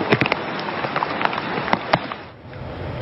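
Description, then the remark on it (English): Heavy, torrential rain in western Japan pours down in a dense, steady hiss, with sharp splashes and drips popping out of the wash; the downpour eases slightly for a moment near the end. “Dozens are dead in Japan tonight after torrential rain triggered widespread flooding and massive landslides in the country's west.”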